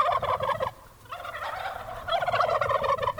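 Several free-range heirloom turkeys gobble loudly in rapid, warbling bursts, with a brief lull before a second chorus of gobbling rises again. No one speaks.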